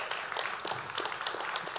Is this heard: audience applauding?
yes